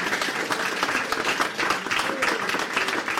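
Audience applause for a volunteer invited up during a show: many hands clapping in a steady, dense patter that stays loud and even for a few seconds without pausing, with no voices standing out.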